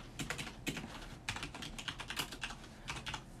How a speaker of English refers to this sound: I'm sorry about the typing. We're gonna hear it back and it's gonna sound like shit.